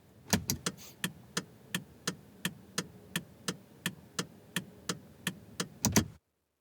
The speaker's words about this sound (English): That actually has a nice beat. Dude, that's a nice beat. I want to say that's your turn signal in a car. You are correct.